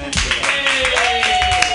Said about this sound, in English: Everybody clap wildly